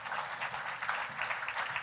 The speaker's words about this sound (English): Yeah, clap for that.